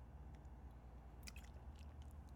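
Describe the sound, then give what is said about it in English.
Someone takes a sip of a drink, with a cluster of soft wet slurping and swallowing clicks over a steady low hum. “Like, I gotta take a sip.”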